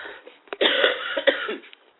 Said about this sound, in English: Excuse me, I do have a bit of a cough.